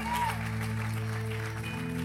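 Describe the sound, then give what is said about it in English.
An audience claps loudly and steadily with scattered shouts, a five-second hand clap and shout for God, over a sustained organ chord holding underneath. “If you believe that God can set the captive free, come on, give him a 5-second hand clap and a shout.”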